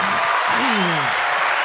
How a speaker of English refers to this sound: I'm the one that controls the applause.